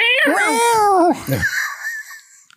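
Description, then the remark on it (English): A person's voice imitates a cat squeal: a loud, high-pitched, wavering yowl lasting about a second, followed by a few softer, breathy vocal noises that trail off. “We forgot a cat squeal.”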